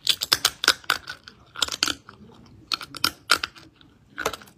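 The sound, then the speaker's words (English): Crisp crunching of a snack being bitten and chewed, a dozen or so sharp brittle bursts in irregular clusters with brief pauses between, heard alone without any talking. “I'll make sure to record a little crunch, and we can, Declan, insert it right here. This is what the crunch sounds like.”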